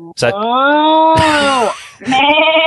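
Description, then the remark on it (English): A person imitates a sheep with a long, wavering bleating baa, followed after a brief pause by a second drawn-out baa, loud. “But thank you again, and please take care, look after yourself, and look after all the farm animals for me, and give us a moo and a bar whenever you feel like it.”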